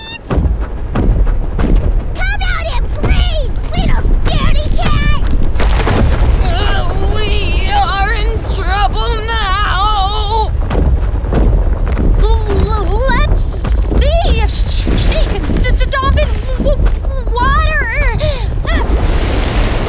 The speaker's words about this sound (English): Guess I'll just have to stomp my feet.